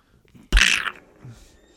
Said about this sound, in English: this is the first time we start sensing that something might be up with Daisy and Donald, because Donald actually sneezes. They're faking being sick, but now he's sneezing for real, and Mickey's eyes literally pop through the back of his head.